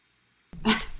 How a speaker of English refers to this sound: Sorry, my dogs are playing in the background.